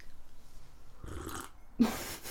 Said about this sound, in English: And a slurp.